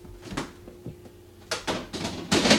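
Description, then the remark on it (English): A freezer door opens and shuts as a bundt pan is put inside to set, with a soft knock early on, then a cluster of thumps and rustling clatter growing louder toward a final firm close. No one speaks. “So I've got it in the freezer.”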